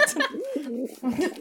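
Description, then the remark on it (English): An angry bird vocalizes with low, wavering coo-like calls in two bursts separated by a brief pause, fairly loud and agitated-sounding. “He is the angriest bird.”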